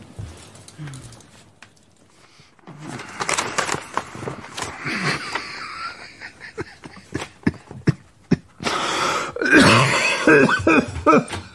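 A man coughs repeatedly in a string of harsh, throaty bursts, building to a louder, rougher fit near the end, close and unaccompanied by speech.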